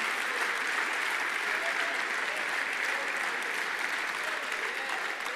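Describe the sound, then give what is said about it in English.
An audience claps their hands in praise of God in a dense, steady wash of applause that stays loud and even throughout, with no voices standing out above it. “Clap your hands and praise him and give him honor.”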